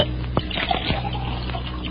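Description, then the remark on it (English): Liquid pours steadily from one glass into the middle glass of three empty glasses, a continuous splashing trickle lasting a couple of seconds with a few small clinks and gurgles along the way. “I'm going to pour the liquid from this glass into the middle glass of the three empties on the right.”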